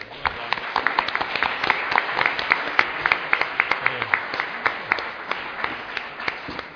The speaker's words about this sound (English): Please give yourselves a round of applause for being so energetic and engaged in this conversation.